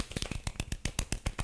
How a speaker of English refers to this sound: Two clap. Let's get a golf clap in here for the muscle of the week.